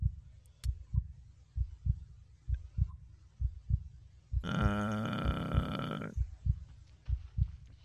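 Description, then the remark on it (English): A steady, low thumping heartbeat pulses roughly every second and a half, prominent, briefly overlaid by a loud harmonic groaning drone midway before the beating continues alone. “Anyone else hearing a thrumming of a heartbeat besides me?”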